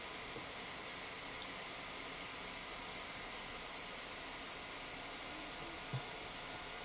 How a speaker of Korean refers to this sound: 선풍기 튼 거예요. 공기청정기 겸 선풍기.